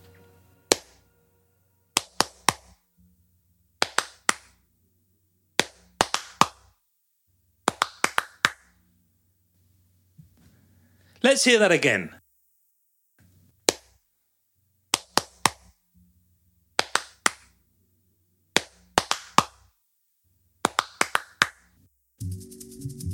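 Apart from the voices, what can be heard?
one person clapping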